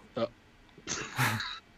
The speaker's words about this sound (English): Hold on, I'm about to have a cough attack.